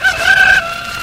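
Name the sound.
rooster crowing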